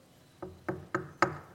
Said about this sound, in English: And here's the difference between me and Jesus. There's a lot of differences. I come to your house and knock on the door.